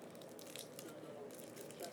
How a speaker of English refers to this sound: You can't open a Kit Kat that fast?